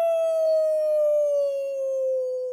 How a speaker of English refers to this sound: And then on the other side of that is the bridge that leads back to the mainland. From that direction, you hear in the distance a howl.